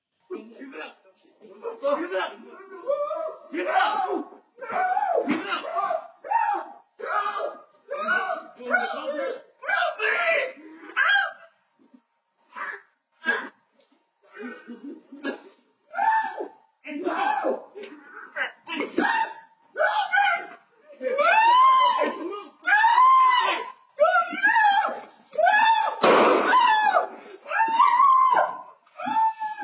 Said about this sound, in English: what you're about to hear is the man jumping out of his car, telling … to give it up, and then the struggle that ensues